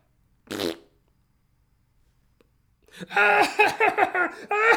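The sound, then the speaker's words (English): A short, buzzy blown-raspberry burst, a voice imitating a fart, followed by a couple seconds of quiet and then a stretch of loud, choppy laughter. “You know, as I turned to run, I was like, I accidentally farted.”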